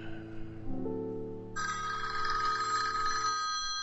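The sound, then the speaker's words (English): A low droning tone gives way to a bright, shrill telephone ring in an office that sounds once for about two seconds, fairly loud, with no voices. “And as soon as I typed the last word and the last period, I picked up my phone.”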